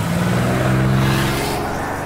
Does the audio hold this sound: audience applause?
no